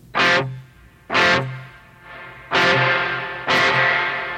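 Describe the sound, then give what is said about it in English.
Four loud, distorted electric guitar strums through an amplifier's plate reverb setting on the lead channel ring out about a second apart, each with a bright attack and a long, washy reverb tail that lingers into the next, with no talking. “That's the spring setting, and then there's a plate?”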